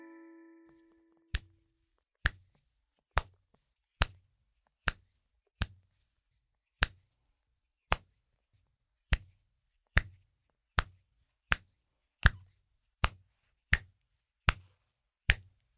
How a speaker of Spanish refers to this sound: Creo que muchos de ustedes descubrieron el sonido sorpresa de hoy. El sonido que escuchamos proviene de nuestras manos y fue el del chasqueado de dedos.